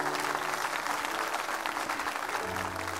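audience applause

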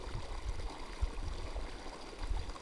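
flowing stream water

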